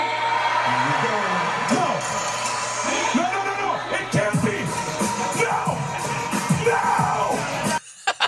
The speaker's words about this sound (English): I just had to play that because I loved Kevin Owens screaming while his reactions were playing. So good.